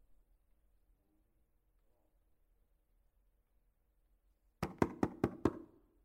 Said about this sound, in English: The knock becomes more urgent at the door.